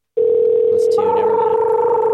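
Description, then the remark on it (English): A telephone rings on an outgoing call to an expert on vomitoriums: a steady, loud electronic tone holds without a break, and a second, higher tone joins partway through, giving a slightly buzzy, sustained sound. “So we're gonna call up an expert on vomitoriums.”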